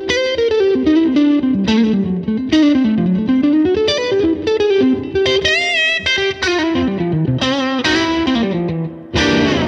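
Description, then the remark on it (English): An overdriven electric guitar, played with a Chula pedal on and a slapback pedal set to a very slight slap, plays a loud, continuous melodic line with a short slapback echo, bending and sliding between notes with a gritty, bright tone and brief gaps between phrases. “It pops a little more with that Chula on. You hear a little more.”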